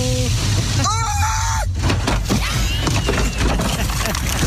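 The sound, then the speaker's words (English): A brief wavering sung line gives way to a loud smashing car crash, followed by a few seconds of crunching, splintering debris and scattered impacts. “That's them singing and not paying attention and getting into a car accident.”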